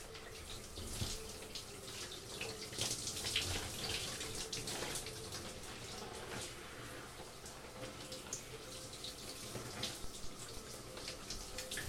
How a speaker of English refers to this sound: Right now I'm just taking a cold shower to cool down.